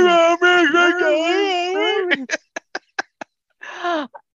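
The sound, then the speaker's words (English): A long, drawn-out vocal yawn with a wavering moan lasts about two seconds. Several short, sharp clicking bursts follow, then one more brief groaning breath, all fairly loud. “Oh, I should have did it with the yawn.”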